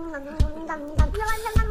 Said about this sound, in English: Then the guy on the drums starts.